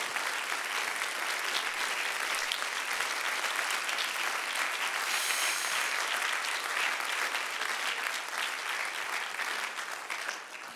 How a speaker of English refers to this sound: I wish somebody would clap their hands in this house.